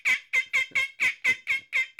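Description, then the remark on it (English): A turkey call sounds a quick, steady string of about eight sharp, raspy yelps, loud, mimicking a turkey with no talking over it. “He's got the foreplay turkey call.”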